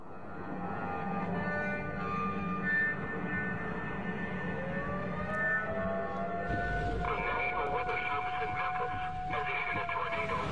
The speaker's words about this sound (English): The tornado sirens were going off.